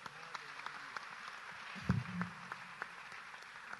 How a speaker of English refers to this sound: Can you clap for the Lord?